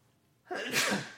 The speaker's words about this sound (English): I have to sneeze. Hold on.